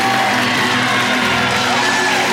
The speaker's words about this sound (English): somebody ought to keep cheering. Keep making some crazy noise.